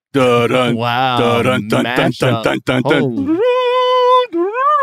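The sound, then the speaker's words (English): A single voice vocalizes the theme from the film Jaws, rapid repeated low two-note syllables that speed up, then a long sustained wavering note, loud, imitating ominous film music. “Okay, shout out to Kitty Feisty Backpack on Discord, who seamlessly was like, it's coming on, then wrote out the Jaws theme, so I had to perform that.”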